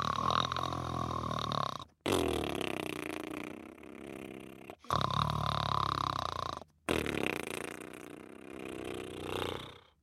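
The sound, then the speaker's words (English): A voice imitates deep snoring: four long, rumbling, throaty snores in a steady rhythm, each broken by a brief pause, loud with no talking. “fell asleep, snoring deeply.”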